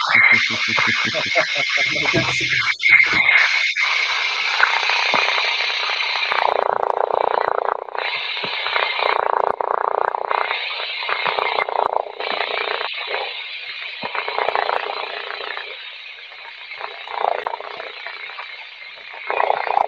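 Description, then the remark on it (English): A portable generator engine runs continuously, its loud, steady drone sounding thin and warbling, with a sputtering, buzzy, almost flatulent texture and rapid pulsing at the start. “Sorry, with your noise canceling, it just sounds like a fart. Continuous fart.”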